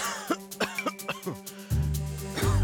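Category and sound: human body sound, a man coughing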